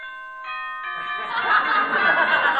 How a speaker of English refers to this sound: Okay, killer, it's your big moment. Here's the bell for the first round.